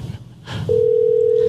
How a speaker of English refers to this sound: Ring. There's a ring.